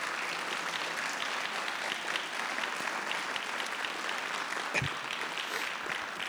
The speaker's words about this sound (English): So give them a clap as they come up.